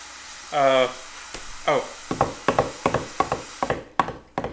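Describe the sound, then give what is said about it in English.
Uneven, hurried footsteps thud in a lopsided rhythm of someone running with a club foot, preceded by two short tonal groans or creaks. “That's me running with my club foot.”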